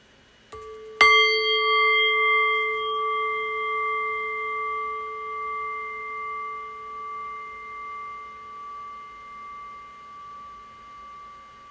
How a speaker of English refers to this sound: And so in a few moments' time, I will ring the bell again. The invitation here is to rest awareness on the fading bell. Allow the decay of the bell to guide your awareness into silence.